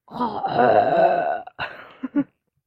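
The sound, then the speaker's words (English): A voice makes a growling, groaning monster noise that swells for over a second, then trails off into a few shorter guttural grunts before silence. “Like make a monster noise.”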